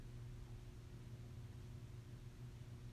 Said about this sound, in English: Right now, notice the hum in the background of the room.